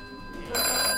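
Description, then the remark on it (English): A telephone bell starts ringing partway through, a loud, bright, metallic trill that fills the second half of the short clip, with no one speaking. “is that the phone?”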